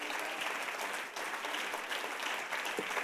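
An audience claps their hands in a steady, dense wash of applause that holds at an even level for about three seconds, with no voices standing out.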